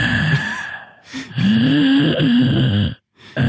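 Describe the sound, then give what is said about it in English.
A person breathes heavily and grunts in an exaggerated way, loud, with drawn-out voiced groans and gasps running almost continuously before a brief pause and another short breath. “So just, you know the heavy breathing that you have to cut out whenever you talk on this show?”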